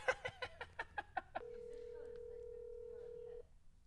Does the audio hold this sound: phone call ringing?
yes